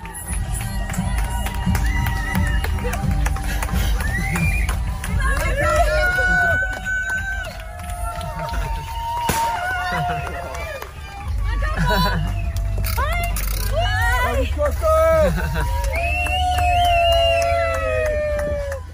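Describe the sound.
Friends and family lining the streets in their cars cheer and shout continuously for a woman as she drives home, keeping social distance, with high excited voices, whoops and screams rising over a steady low rumble of idling engines and street noise for the whole stretch.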